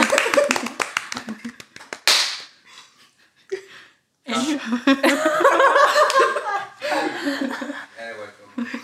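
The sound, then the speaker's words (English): A burst of rapid clapping with chuckles and laughter, congratulating a guest on winning the Redress Design Award, fading out, followed by people talking over a lively, layered mix of voices. “You won the back clap as well.”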